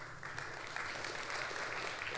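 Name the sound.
tepid audience applause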